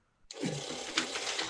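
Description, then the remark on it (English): A money gun whirs to life after a brief quiet moment, spraying bills in a loud, steady rush of fluttering paper and motor noise with no talking. “First of all, I had to get the money gun for you, brother, because I wanted to celebrate you”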